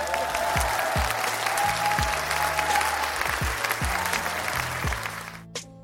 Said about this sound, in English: Congratulations, Czech. Let me, round of applause, please. Round of applause. Wow. I know this is not the award of the day, but they just deserve an applause for this one. Round of applause.